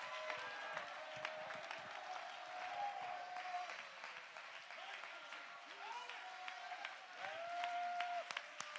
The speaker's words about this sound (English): Clap your hands and give God praise if you believe that. Come on, you ought to mix it with your voice. Come on, you ought to give him a Psalms 47. Oh, clap your hands, all your people, and shout unto God.